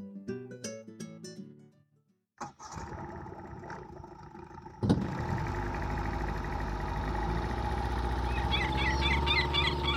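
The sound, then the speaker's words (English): After a few short musical notes and a pause, a boat engine starts up and settles into a loud, steady rumble, with faint bird chirps near the end. The boat is heading out to a tropical island on a sunny day over crystal clear water. “I'm on a boat, heading out to a tropical island.”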